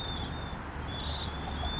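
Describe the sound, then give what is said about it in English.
Thin, high-pitched cedar waxwing calls drift in as faint, sustained overlapping whistles, coming and going over a steady low outdoor rumble with no voices, in an urban park in Hamilton, Ontario. “You can potentially hear the high-pitched cedar waxwings as well too.”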